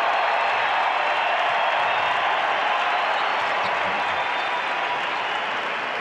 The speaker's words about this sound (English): Crowd gives him a standing ovation. He gives him a wave.